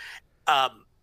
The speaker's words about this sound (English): I mean, no, I just added a yawn there.